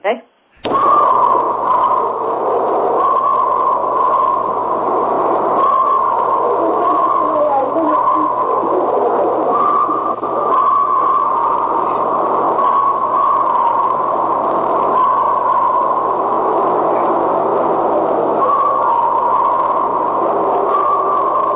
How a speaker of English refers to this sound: Anyway, you get the idea. Blood-curdling screams again. Does that sound like Bigfoot? Sounds very similar. What is that? It's a recording that I've always kept, and I wonder if it's a better copy of what you have